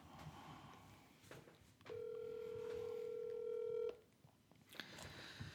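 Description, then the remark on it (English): A telephone keypad dialing tone for a call to Florida rings out as one steady, fairly loud electronic beep held for about two seconds, with quiet background noise before and after. “On that note, it's important that we get my mom on the phone because I promised her for like 2 minutes because she can weigh in.”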